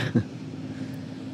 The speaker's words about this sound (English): we're hearing a boat in the background now, the water taxi of Rotterdam.